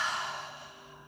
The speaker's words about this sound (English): Let's do that again. A nice deep inhale, and then exhale it all out.